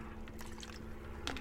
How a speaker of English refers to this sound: I'm having a swig of Coke.